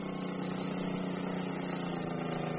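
A boat motor idles with a steady, low mechanical drone, holding constant throughout with no voices, as the boat backs away from a dock and swings its nose out toward the ocean.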